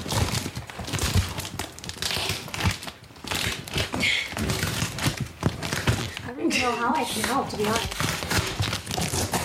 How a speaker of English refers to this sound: This is like the longest anyone's ever taken to open a package.